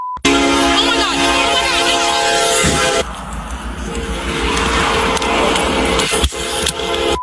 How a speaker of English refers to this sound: 346, patrol car was just hit by a train. Dispatch, Central 346, get us medical emergency. The suspect was in the vehicle that was hit by the train.